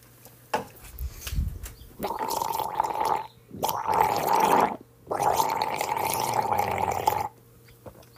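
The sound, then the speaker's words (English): A person gargles water in three bursts of bubbling, throaty rattling, each lasting a second or two, separated by short pauses. “Man, I got a gargle.”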